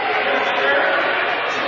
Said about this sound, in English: And that will be his third, and you can tell that the crowd, I don't even have to say anything about it, the crowd is going to give you their opinion of it right now.